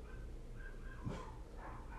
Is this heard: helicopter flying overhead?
no